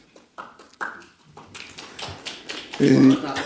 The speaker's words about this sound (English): I love the weak applause there, that one guy, the one staffer in the back of the room.